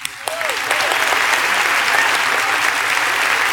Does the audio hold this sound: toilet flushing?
no